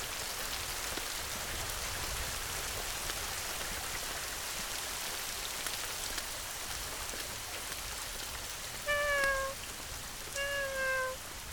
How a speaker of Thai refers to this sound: เฮ้ยอะไรวะน่าลูกแมวหรออุ้ยโดนทิ้งเหรอ